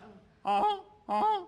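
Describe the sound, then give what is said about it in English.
A person imitates a goose with two loud, nasal honks, each about a third of a second long, separated by a short pause. Nothing else is heard. “Well, I didn't learn to yodel, but my friend Errol Heiberg in seventh grade taught me how to do a goose.”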